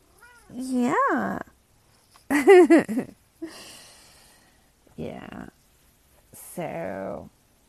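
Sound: domestic cat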